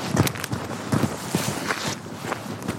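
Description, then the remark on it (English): Quick, steady footsteps thud along outdoors at a running pace, running away from an approaching patch of mist, about half a dozen strides over a constant breezy background hiss, moderately loud. “Let's run away! Run away! Come on, Rosie.”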